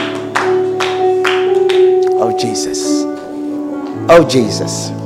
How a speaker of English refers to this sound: Clap your hands together for the Lord and stand to your feet as we bring the service to a close. Stand to your feet.